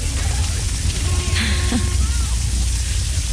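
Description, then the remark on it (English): Rain falls in a steady, dense hiss that holds at an even loudness throughout, with a few faint, brief tonal sounds drifting through the middle. “Hope it's not raining where you are. It is here.”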